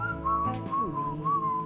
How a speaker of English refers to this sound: That would be our first time and last time, hopefully, whistling on the podcast.